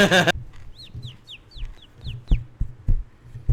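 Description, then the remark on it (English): A person imitates bird calls, producing a quick series of about seven high, downward-sliding chirps after a short loud burst, with soft low thumps in the background. “You made birds. That, we've got birds. Wait, did you make that sound?”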